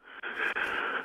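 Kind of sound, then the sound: human body sound, sneeze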